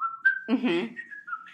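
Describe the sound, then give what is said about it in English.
Someone whistles a short, bright melody of steady, clear notes, the opening theme of The Andy Griffith Show, broken briefly in the middle by a low voiced burst before the whistling resumes. “did you ever watch, no, you didn't because you're too young, the old Andy Griffith show, but people will know where they whistle.”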